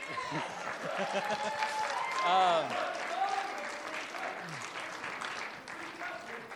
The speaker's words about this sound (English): Clap, I guess.